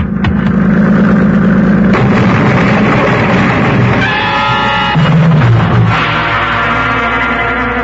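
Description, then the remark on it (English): A motorboat engine roars loud, its droning growl holding steady with shifting tones as the boat gets close, bearing down at speed to ram and run down another boat. No voices are heard. “that boat, it's getting pretty close, isn't it? Time it slowed down? Not if they intend to ram us.”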